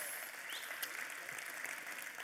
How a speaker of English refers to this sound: I know some of you clap for that and like, 18 years, that's awesome.